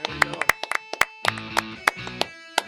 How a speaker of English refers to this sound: All right, well, let's clap it out, people.